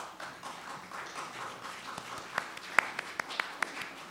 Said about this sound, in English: You know, I don't think we get to applaud our worship team nearly enough. Can we do that again, please?